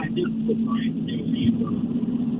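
Steady low road rumble from inside a moving car, thin and muffled as heard over the phone line of a caller to a Patriots postgame radio show, with a constant droning hum and no clear talking throughout.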